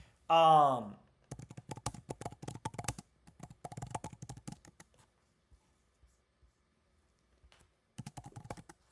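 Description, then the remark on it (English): A brief voiced sound opens, then rapid computer keyboard typing clatters in dense bursts as a name is typed and entered, thins to a few scattered key taps, and picks up again briefly at the end. Moderately loud. “Of course, as I'm typing it, I remembered, then once I clicked enter, that.”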